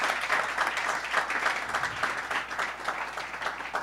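A crowd claps steadily in sustained applause for the AV crew, a dense wash of many hands that stays fairly even throughout, with faint voices mixed in underneath.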